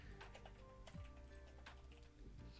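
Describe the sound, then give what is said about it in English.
Rapid, irregular clicking of keys on a computer keyboard as someone types into a document, fairly quiet, with a steady low hum in the background and no one speaking. “But also, anyway, so while I'm typing this out, I'm going to ask you guys the another question.”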